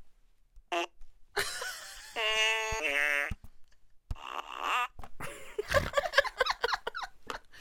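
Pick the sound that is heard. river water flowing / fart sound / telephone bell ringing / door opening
fart sound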